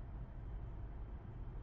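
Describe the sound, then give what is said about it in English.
A steady, low rumbling hum of road noise from inside a moving car that is being driven, constant with no voices. “If we're gonna be driving together, we might as well try and get along.”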